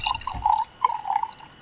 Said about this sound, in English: And we're going to pour some drink here.